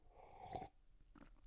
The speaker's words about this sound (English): I've got a little glass of coffee right by me. I'm just gonna have a sip of this, but that would be it. You can actually hear me sip if you want. Here we go.